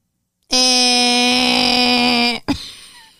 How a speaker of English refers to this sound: The buzzer already?